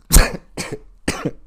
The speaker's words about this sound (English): Cough, cough, Corona. I did not mean to cough in the microphone.